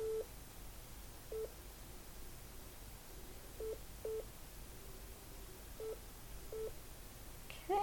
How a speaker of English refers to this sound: now we're in the middle of the document. There we go. And we got some beeps there.